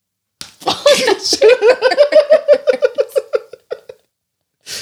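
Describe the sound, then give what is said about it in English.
A sharp slap of a tortilla against a face, immediately followed by a long burst of loud rhythmic laughter that gradually trails off, then another brief noise at the end. “I'll take the tortilla hit because I didn't take it.”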